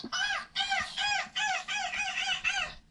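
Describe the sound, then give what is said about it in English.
A person imitates a seagull, letting out about six loud squawking cries in quick succession, each a nasal rising-and-falling call with brief gaps between, and no talking. “I thought I'd do my own seagull imitation.”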